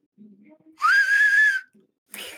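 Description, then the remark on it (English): A single loud, airy whistle made by a person with the tongue curled toward the teeth, held for under a second, rising slightly then steady, followed by a brief breathy hiss of air. “With the work whistle, you take your tongue, you kind of taco it towards your teeth.”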